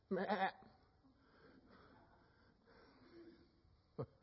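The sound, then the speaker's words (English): A single loud sheep bleat rings out at the start, short and wavering, then fades into a quiet hum of background noise, with a couple of sharp knocks near the end. “And they hung out with sheep.”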